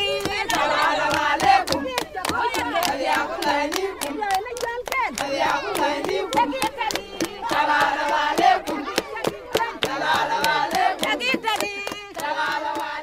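Women and children at a hospital take over a sing-along and sing South Sudanese songs together, their voices rising and falling over steady, rhythmic hand clapping that keeps a brisk beat throughout at a lively, fairly loud level.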